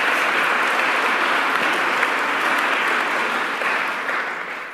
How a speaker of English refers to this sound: It is always a good day when our governor, Kathy Hochul, is back home in the city of Buffalo. Let's give our governor another round of applause.